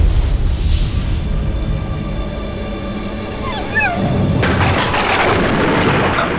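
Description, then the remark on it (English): A heavy, continuous low rumble of thunder from a lightning storm rolls throughout, swelling into a harsher, crackling surge near the end, with a few brief high whimpering yelps in between. “It's just some lightning.”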